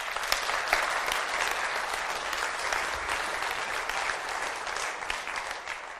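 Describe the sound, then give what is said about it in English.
Steady audience applause welcoming a man invited up to join the speaker, a dense wash of many hands clapping at an even loudness for several seconds, tapering slightly at the end, with no voices on top. “So give my dad a round of applause.”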